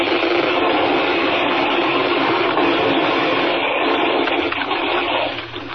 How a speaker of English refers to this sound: Not quick enough. The ice is closing in. It's crushing the boat.